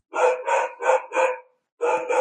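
Dogs barking at nothing in a quick run of four sharp, loud barks, a brief pause, then two more, with no one talking.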